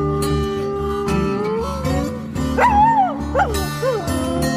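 A dog outside barks and yelps in short, rising bursts near the end, heard over steady music that plays throughout.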